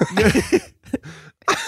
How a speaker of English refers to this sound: Yeah, I'm coughing.